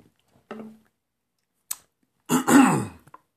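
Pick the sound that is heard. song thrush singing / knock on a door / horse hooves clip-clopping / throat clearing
throat clearing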